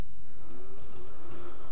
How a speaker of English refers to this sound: Everybody take a breath.